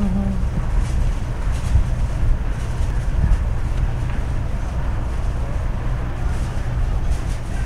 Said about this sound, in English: Stand out here. It's really windy.